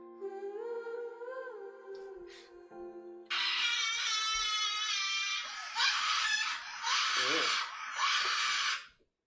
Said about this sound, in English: No. Is that the kid? Yeah, the kid screams.